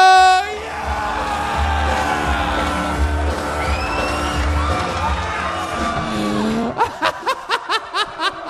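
A large live audience boos in a long, sustained, loud drone of overlapping voices, then breaks into a run of about seven rhythmic, evenly spaced shouts or claps.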